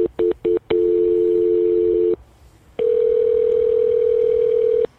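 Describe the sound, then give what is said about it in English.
A phone call being placed to a supervisor: a few quick telephone beeps lead into a steady, loud dial tone that cuts off, then after a short pause a second long, unbroken tone rings out. No voices. “Let me get my supervisor on the phone.”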